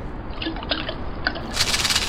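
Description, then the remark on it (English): Water and mints spill out of a coat in a steady splashing wash, the small hard mints clicking and pattering through it, growing louder and brighter near the end. No voices. “It's not hail. Look. It's mints. Water and mints.”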